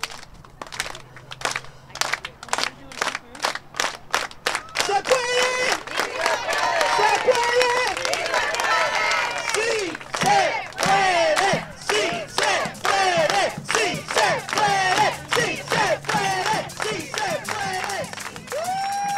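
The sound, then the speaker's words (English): A large crowd of protesters chants loudly on a Monday evening at the Sonoma County Administration Building in Santa Rosa, voicing concerns for the county's over 11,000 farm workers, under rain clouds; many voices rise and fall together in a steady, repeating rhythm, with sharp rhythmic claps or beats at the start. “On Monday evening at the Sonoma County Administration Building in Santa Rosa, a crowd of protesters came together to voice their concerns for the over 11,000 farm workers who work in the county.”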